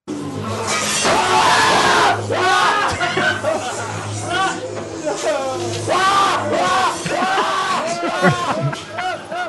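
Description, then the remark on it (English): Several people scream and shriek over one another, loud, inside a haunted attraction, with a crash-like burst near the start and a constant crowded babble of raised voices throughout. “Screaming.”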